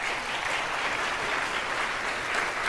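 Steady, dense applause from a worship audience after the choir leads worship, many hands clapping at once with no break and no voices standing out above it.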